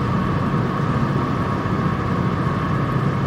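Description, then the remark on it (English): A steady, rumbling motor engine drones continuously at moderate loudness, a broad low hum with a faint tonal whine, from a medium-sized boat going by, with no speech. “There's a boat going by.”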